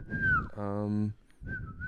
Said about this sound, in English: Stop whistling into the fucking microphone.